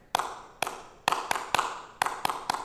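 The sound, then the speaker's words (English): An audience does a set clapping routine called the clap: eight sharp, crisp hand claps in a syncopated pattern, a few evenly spaced claps, then quicker pairs, each crack bright and loud with a short ring, and no talking. “We call it the clap.”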